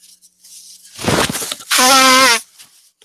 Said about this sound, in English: Goodness. With a sort of hooting noise. Sounds like it was blowing his nose.